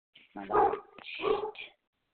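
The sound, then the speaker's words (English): A female Great Dane puppy lets out a couple of short, yelping barks, moderately loud, with a brief pause between them and no other sounds around. “She's a Great Dane puppy, and that we've had this long without any interruption is amazing.”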